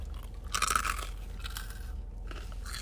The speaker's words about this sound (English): Is it toasted? It's toasted. Wow. And that part definitely stays toasted and even adds to that crunch. I want to get a little crunchy ASMR over you guys. Taking a little big piece of the breading here.